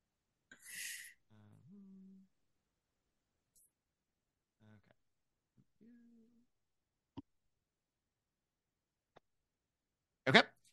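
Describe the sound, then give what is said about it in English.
Dice rattle and tumble in a few sharp, isolated clicks, then land in a louder clattering burst near the end. Faint voices murmur briefly earlier; otherwise quiet. “And then I will roll my dice.”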